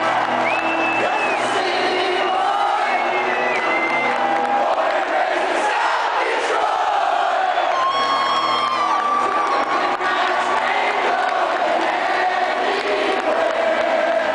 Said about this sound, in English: And they actually play it like at their playoff games for the Red Wings. And I believe they lower the volume for that so the crowd can sing Born and Raised in South Detroit. You know, it's fun.